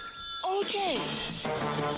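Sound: telephone ringing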